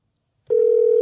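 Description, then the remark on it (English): A steady, loud electronic phone tone starts abruptly partway through and holds unbroken to the end, like an outgoing call's ringing tone heard on the line, with no voices. “Is it ringing?”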